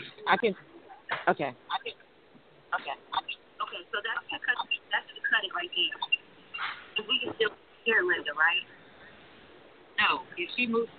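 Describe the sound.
Thin, phone-quality voices talk in choppy bursts over a video-call line, with the speech seeming to double back on itself as an audio echo between the phone and computer.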